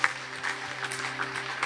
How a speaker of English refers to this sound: Come on, can we give a hand, a round of applause for people who just made that decision?